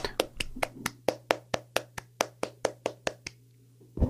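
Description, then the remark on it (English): One person claps quickly and steadily, about fourteen sharp claps in an even rhythm, then stops, leaving a low background hum. “That's just to clarify, I'm clapping, not doing something else.”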